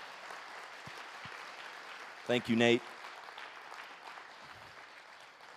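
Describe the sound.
Steady applause from an audience fills the whole clip, a dense patter of clapping, with a brief spoken thanks rising over it midway before the clapping carries on and slowly thins.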